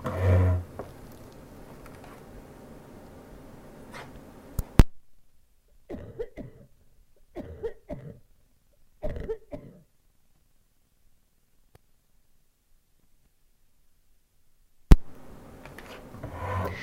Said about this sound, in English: I do have to clear my throat, though. My cough is seriously about to go off here.